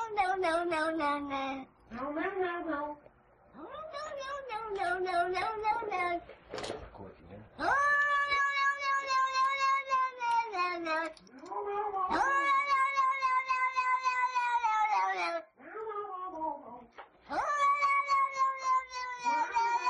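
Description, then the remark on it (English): A cat in a YouTube video meows over and over, starting with shorter cries and building into long, drawn-out yowling wails, loud and continuous with only brief pauses between calls. “Oh, that go to the cat YouTube thing.”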